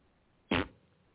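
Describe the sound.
A single short, buzzy raspberry blown with the lips, imitating a fart, loud against a quiet background, lasting about a fifth of a second before trailing off.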